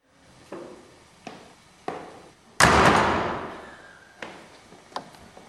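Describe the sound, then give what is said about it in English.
A heavy, modern vault door opens without any squeak: a few sharp mechanical clunks, then a loud rumbling surge as it swings and slowly fades, followed by more scattered clicks. No voices. “putting up with that old creaky Blues Saber Radio Blues Vault door for years, but I had to add a second vault”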